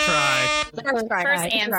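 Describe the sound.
A loud, steady air horn blast holds a flat buzzing tone for just over half a second, then cuts off as voices start talking excitedly over one another.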